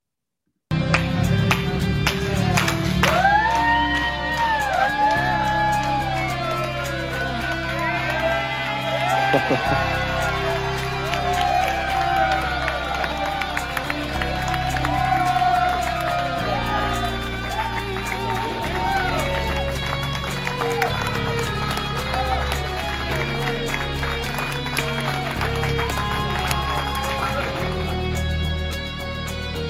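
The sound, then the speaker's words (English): A large crowd of men in Jacksonville cheers and claps nonstop for about half a minute as a man walks out of the cancer ward after ringing the bell cancer-free, with rising whoops and shouts over a dense, loud roar and music playing underneath. “I'm gonna need all the clapping.”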